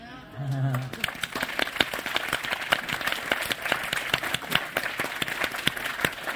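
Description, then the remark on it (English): A large crowd bursts into loud, sustained applause for a singer's final line at a seaside performance, dense clapping that continues steadily for several seconds after a brief voice sounds at the very start. “along with the roar of a very loud and long applause, the light magically came back and the dances started.”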